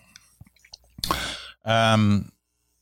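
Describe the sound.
A few faint mouth clicks, then a quick airy slurp from a cup of coffee, followed by a short voiced sigh of satisfaction.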